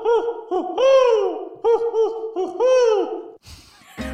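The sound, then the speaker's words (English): A voice mimics a snowy owl with a string of loud, wavering, mid-pitched hoots, some short and some drawn out, followed by a brief rustle and a dull thump. “I don't think that's what a snow owl sounds like.”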